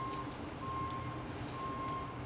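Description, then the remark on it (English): A vehicle's reversing alarm sounds repeated steady, high-pitched beeps over a constant low rumble of construction noise. Nobody speaks. “Just on time, the construction noise.”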